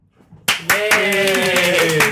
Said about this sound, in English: We had more rounds of applause in the last two episodes. Because it's been really good.